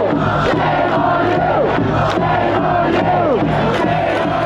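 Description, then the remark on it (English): A large protest crowd in Ireland on May 2nd chants and shouts continuously, including "shame on you", "no vaccine passports" and "end the lockdown", many voices blending into a loud, dense roar with rising and falling yelled phrases throughout. “Ireland, May 2nd, protests and shouts of shame on you. They were also chanting no vaccine passports and end the lockdown.”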